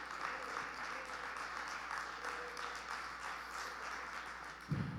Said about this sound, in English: Can you say praise the Lord and give God a hand clap of praise?